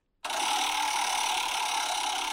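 A prize wheel spinning sound effect, played on live radio from a phone held right next to the microphone, starts abruptly and runs as a loud, steady, rapid rattling tick, holding an even pace throughout with no voices over it.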